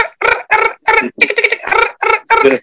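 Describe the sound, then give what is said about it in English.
A voice imitates the chirping of a Mexican chirping tarantula with seven short, bright, squawky bursts in a quick, regular rhythm, loud and harmonically rich like clucking. “you're just not familiar with the Mexican chirping tarantula”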